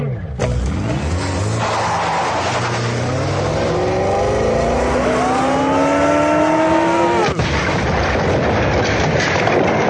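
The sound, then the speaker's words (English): A car engine roars, revving higher and higher in a long rising whine over a harsh rush of noise, with tires squealing as the car busts through a sandcastle, before it cuts off abruptly. “We're busting through. Oh, but it's a sandcastle. The car will be completely sanded up.”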